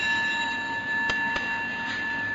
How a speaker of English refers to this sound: Listening to the bell, I feel the afflictions in me beginning to dissolve. My mind calm, my body relaxed. A smile is born upon my lips. Following the sound of the bell, my breath brings me back to the safe island of mindfulness.